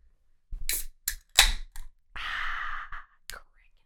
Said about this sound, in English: Is there anything better than the sound of a can of beer cracking open? Some might say, you know, the sounds of your firstborn child crying as he's welcomed into the world. I say the cracking of a beer.